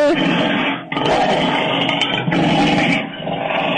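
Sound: lion roaring and growling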